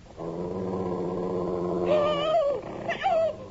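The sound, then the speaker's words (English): A wolf growls low and steadily as it attacks a person, the rumble swelling into sharper, rising snarls toward the end as if lunging. No voices. “Get it off me! Get it away! Help! I see the damn thing! It's a wolf!”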